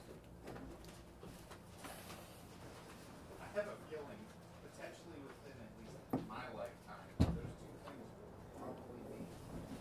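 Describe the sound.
A chair with someone seated in it is scooted in across the floor in short, uneven pushes, ending in a sharp bump near the end, with muffled voices and room noise throughout.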